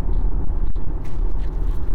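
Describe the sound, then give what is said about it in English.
A dog, Mackie Dog, licking the microphone inside a moving car: a sharp click and a few soft, wet rustling contact noises over a steady, loud low rumble of the car engine. No one speaks. “She licked the microphone.”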